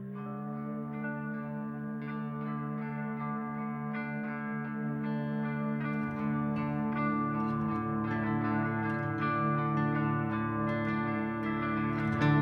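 A heavy metal song plays with thick, distorted electric guitar holding droning chords, joined about halfway through by sharper percussive hits as the music grows denser and steadily loud. No one talks.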